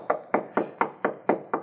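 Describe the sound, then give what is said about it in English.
Seven sharp, evenly spaced knocks on the wooden door of Mr. Stone's home at 2 a.m., steady and insistent, each a dull thud with a short decay, moderately loud with no voices. “It's also possible Mr. Stone took a sleeping pill, fell asleep, and is too drowsy to hear our knocking.”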